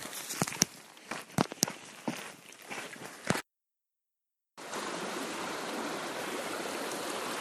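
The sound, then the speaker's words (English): Crunching footsteps over a soft wash, a brief pause of silence, then Buffalo Creek, more like a river, flowing steadily in the woods, its broad, even rush of water continuing without interruption. “There's nothing quite like the serene sound of a flowing creek in the woods, and that's where we are, right by Buffalo Creek.”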